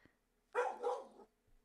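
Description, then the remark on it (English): A dog lets out a loud bark, a single drawn-out burst with two quick pulses running together, then quiet. No one speaks. “Sorry, my dog.”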